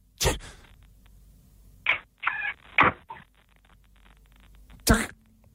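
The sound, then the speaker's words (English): A voice mimics a microwave: a sharp mouth click, a few short nasal beeping tones with brief pauses between, then a final loud click, performed alone without other talk. “who do you think made the better microwave noise?”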